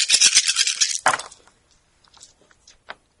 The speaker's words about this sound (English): So why don't you, Dr. Watson, why don't you roll the seven dice of combined might? Let's see what happens.